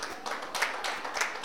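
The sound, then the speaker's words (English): An audience claps in a steady, crackling patter of many hands, swelling briefly twice before settling back. There is no talking over it. “Why are you clapping?”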